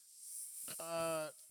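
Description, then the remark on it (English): A steady, snake-like hiss runs through the whole moment, while a short voiced vocal sound rises over it midway, close and fairly loud, then fades back to the hiss. “Did that snake bite you?”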